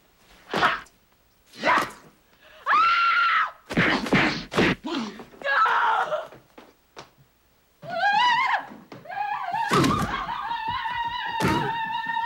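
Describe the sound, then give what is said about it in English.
In a film scene, a woman who finds a man in the house lets out several shrill, wavering screams, the longest near the end, and runs away, mixed with loud thuds and bangs as if something is being struck or knocked over. “I mean, she pulls a great face when she screams and runs away.”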